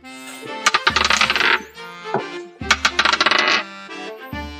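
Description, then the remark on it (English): Dice clatter and tumble across a hard surface in two quick rattling bursts, each a rapid string of sharp clicks, with a few isolated knocks between, fairly loud with no talking; rolled for a history check, they roll off the table and land on 14. “I rolled it right off the table.”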